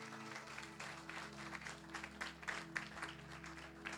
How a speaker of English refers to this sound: Please sit down. Let's clap for her.